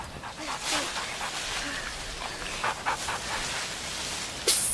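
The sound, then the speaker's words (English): A dog pants in quick, breathy bursts, and a single sharp bark cuts in near the end against a steady outdoor hiss. “Dog, catch!”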